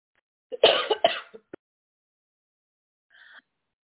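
A short burst of harsh, throaty coughing from a person sick with a sinus infection and COVID, two or three rough hacks in quick succession, followed by a brief faint sound after a pause of silence.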